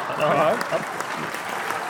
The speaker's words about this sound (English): Applause.